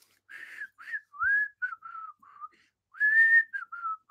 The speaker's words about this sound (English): Man, I can't whistle.